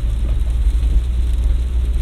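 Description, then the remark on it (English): A delivery truck rumbles by, its heavy low engine drone and road noise steady and loud throughout, with no voices over it. “Delivery truck of some kind.”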